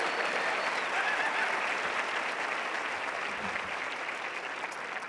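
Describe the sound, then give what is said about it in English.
A crowd applauds the D3 men's basketball team that won 50 games in a row, a dense, even wash of many hands clapping that holds at a fairly constant level for several seconds without any voices standing out. “You can applaud that. That's worthy of applause.”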